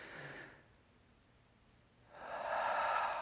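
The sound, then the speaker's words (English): A close, audible breath cycle: a brief airy inhale, a quiet pause of about a second and a half, then a long, loud, rushing exhale. No one speaks. “It's amazing what a deep breath will do for you.”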